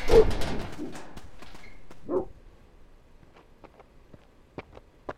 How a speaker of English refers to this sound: Oh, look. You brought a friend. A big... angry friend. Shoot. Go away. Dog.